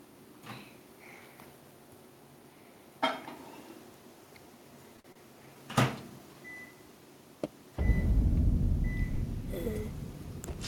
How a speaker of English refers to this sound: All right. I can hear a microwave, I think.